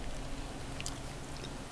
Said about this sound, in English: I can hear myself chewing. It's disgusting.